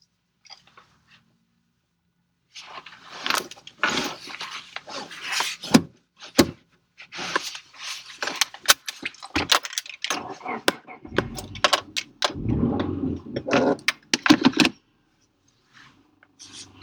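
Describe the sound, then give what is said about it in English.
Keys jangle and clink in bursts for several seconds, followed by a low rumbling surge as a car engine cranks and catches before it fades to quiet, the car being started to drive westward on Interstate 94. “So now, I'm going to start up the car, and we're going to drive westward on Interstate 94.”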